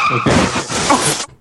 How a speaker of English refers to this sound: Put the car crash in again.